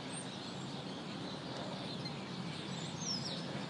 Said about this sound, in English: Oh, and different kind of birds over here.